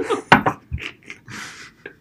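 A can is tossed at a trash can on the third try after two misses, making a few sharp, irregular clanks and knocks against the rim, with a soft breathy hiss between the hits.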